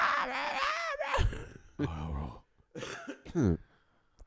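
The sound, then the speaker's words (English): A person vocally imitates their dog Deuce, a French bulldog, screaming at other dogs on walks: a wavering, high-pitched wail lasting about a second, followed by several rough, strained bursts, fairly loud. “He screams.”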